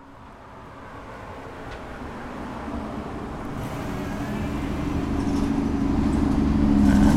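A bus rumbles along the street, its low engine drone steadily growing louder over several seconds, with no voices present.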